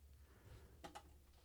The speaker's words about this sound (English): You said the word clap. Give me a good snap.